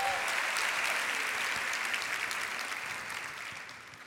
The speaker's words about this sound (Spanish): Date un aplauso, gloria a Dios.